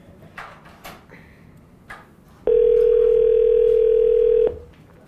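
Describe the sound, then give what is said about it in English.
A steady telephone dial tone hums loudly for about two seconds while a call is being dialed, a single unbroken pitch, after some brief scattered clicks and shuffling noises. “So, while there's downtime, make that lower while you're dialing.”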